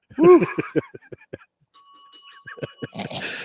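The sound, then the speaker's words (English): A bright bell rings once and hangs for about a second, sustained and clear, following a stretch of a man's talking, with more speech and laughter-like noise crowding in as it fades. “I got three bells today.”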